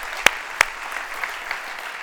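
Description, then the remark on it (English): Congregation applause for God: a crowd clapping steadily, with two sharp, loud claps standing out early above the dense patter, then a softer, even wash of clapping. No one speaks. “Can we give God an applause for all that he's doing?”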